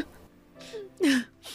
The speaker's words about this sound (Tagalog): Ma, ano nangyari sa inyo? Umiiyak ka ba?